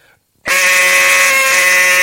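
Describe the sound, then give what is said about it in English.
A loud, long hen quack blown on a duck call: one sustained, buzzy, reedy note that starts abruptly after a brief silence and holds steady in pitch to the end. “So you want to be able just to pick a call up and make your loudest hen long.”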